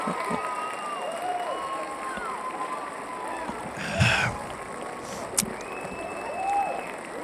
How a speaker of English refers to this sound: And the crowd goes wild. They always do, dude. They always do.